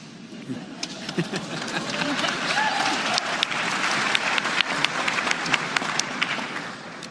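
A large audience at the United Nations applauds a speaker steadily, a dense wash of many hands clapping with sharp individual claps popping out, sustained at an even, fairly loud level throughout.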